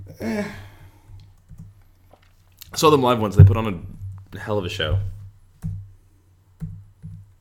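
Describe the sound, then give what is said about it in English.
Scattered clicks of typing on a computer keyboard, a few taps before and after a stretch of someone speaking, with a low steady hum underneath. “Yeah, it's my keyboard. What of it?”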